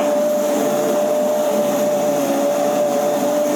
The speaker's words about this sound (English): Yeah. I've never thought about using one of these hand stick ones in a pot of such like that. I always thought of it more of a drink blender, but this will work for sure. Multi-function tool.